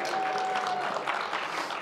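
Steady, dense clapping from an audience after a speaker shows his Kansas driver's license, an even, moderate, continuous crackling wash of many hands with no voices on top.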